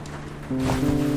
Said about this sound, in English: After putting on my raincoat and gumboots, I set out into the sheeting rain to save my friend.